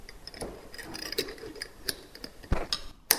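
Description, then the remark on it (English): A food container holding Czech-style cheese covered in oil being closed: a series of sharp, irregular clicks and light taps, ending with a louder snap as the lid locks shut. No one speaks. “Close the container.”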